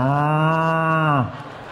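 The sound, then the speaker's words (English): A single loud cow moo at the end of a radio ad for a cattle scour treatment, a long steady low-pitched bellow with rich harmonics lasting over a second, then dropping off abruptly into faint background noise. “Oh, there's a cow at the end of the ad.”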